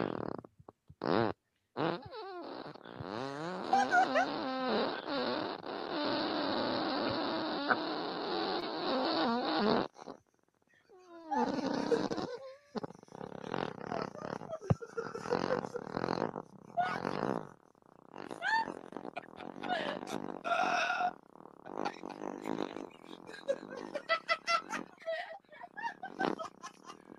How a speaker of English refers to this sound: I'm from Northland, and I can fart for 34 seconds.